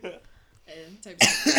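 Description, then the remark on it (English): A sudden, harsh cough bursts out, loud and rough, with a second hacking push right after, preceded by a brief throaty vocal sound. “Sorry, I suddenly got a cough out of nowhere.”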